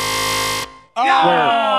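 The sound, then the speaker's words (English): A loud, harsh game show buzzer blares steadily for over half a second during a rhyming word game, then cuts off abruptly; after a brief gap, excited voices break out in overlapping talk. “After the buzzer.”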